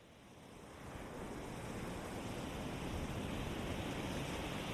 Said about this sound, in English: I love the sound of the ocean. I get out there whenever I can. It's so nice to live close to it.